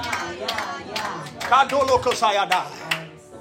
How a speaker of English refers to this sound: Clap your hands and say, yeah.